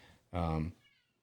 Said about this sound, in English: Freaking cats meowing in the background. Sorry about that.